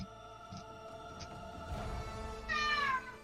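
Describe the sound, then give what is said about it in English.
A cat gives a single clear meow near the end, with a falling pitch, over a faint, steady tonal hum and a few soft thumps. “Meow.”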